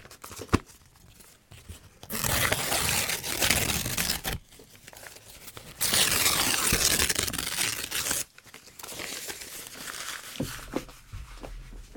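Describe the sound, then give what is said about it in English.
A piece of paper is torn in two long, loud rips, separated by quieter rustling, followed by softer crinkling and handling of the sheet. “And maybe tear it as well.”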